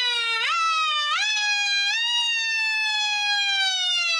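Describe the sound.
A person imitates a siren with one loud, sustained wailing voice, the pitch climbing in a few quick steps and then gliding slowly downward over about four seconds.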